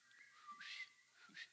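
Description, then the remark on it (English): A person whistles an imitation of a bobwhite quail's call, two short rising notes repeated twice, fairly faint and thin, with no talking. “Bob White, there you go.”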